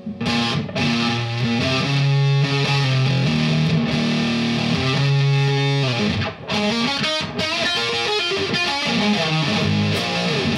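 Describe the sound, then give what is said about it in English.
An electric guitar plays through a 60s-style fuzz pedal built with a new type of transistor, gain fully up, tone at 12 o'clock and volume at about 10 o'clock, producing a thick, saturated, buzzing tone as sustained chords and riffs ring out loudly and continuously, with no voices. “And it still has that fuzz, just like the 60s. Here's the gain control all the way up on the fuzz.”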